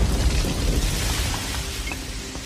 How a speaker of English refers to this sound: In the background, you see an explosion of one of the buildings.